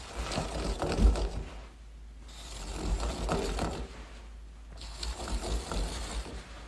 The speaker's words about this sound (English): Are you just spinning? How much toilet paper did you waste?